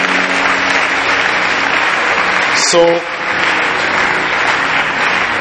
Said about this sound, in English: You know, and he has upgraded the library to 60 books. It's worth a hand clap.